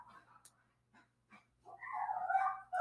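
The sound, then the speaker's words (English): Dogs barking, starting with a few faint, scattered yips and then building into a louder, drawn-out stretch of whining barks that continues to the end. “The dogs have no respect for Anchor.”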